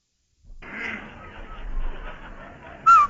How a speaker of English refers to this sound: Hey, Andy, did you hear that whistle? Sure do, Amos. That whistle means rinse-o white, rinse-o bright, rinse-o new.